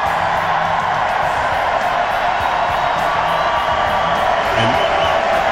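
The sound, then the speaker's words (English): A large rally crowd in a basketball arena cheers the president's statements on birthright citizenship, a dense, loud roar of voices and whoops that holds constant throughout, with a few sharper shouts rising near the end. “And those kind of statements gets the crowd fired up.”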